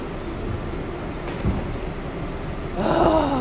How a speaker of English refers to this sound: on the New York subway